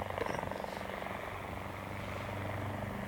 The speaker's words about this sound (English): Listen. What's that? No, not sure. No, no, listen. It's a plane. Well, it can't be. Wait. Wait. Huh? There it is. Look, there. A helicopter.